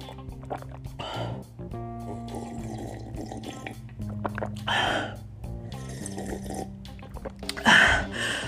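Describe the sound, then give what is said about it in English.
Several wet sips and slurps of water, each followed by a breathy exhale or gasp, with a soft hum underneath and a louder gulp near the end. “Let me sip on some of this water.”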